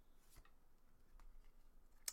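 A playing card is drawn from a freshly opened deck: a few soft, brief papery flicks and slides, quiet, ending in one sharper snap, with no talking.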